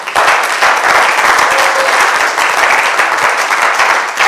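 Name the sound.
audience applauding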